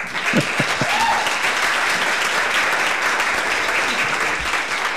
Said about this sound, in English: Okay, I'm going to take a second here and I'm going to insert an applause.